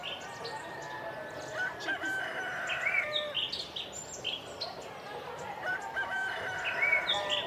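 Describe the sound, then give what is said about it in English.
A rooster crowing sound effect plays, the rooster crowing repeatedly over a busy backdrop of clucking chickens and chirping birds, with steady outdoor noise underneath and calls overlapping throughout. “And I have attracted some nearby chickens.”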